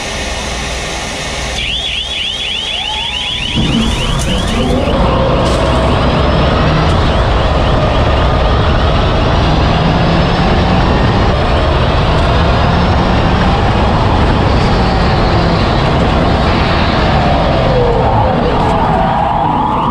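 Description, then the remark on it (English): An electric race car charges up the Pikes Peak hill climb course, its high motor whine rising and falling over a steady loud roar of wind and tyres, continuous throughout. “And honestly, electric vehicles are perfect for Pikes Peak in those high altitudes where gas engines might struggle.”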